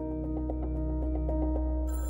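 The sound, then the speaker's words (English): A corded telephone in a kitchen rings with a rapid, pulsing trill that repeats steadily for a couple of seconds, clear with no voices, ending on a brighter, higher burst of ringing. “But she only had to wait 2 weeks to get a phone call that would change her life.”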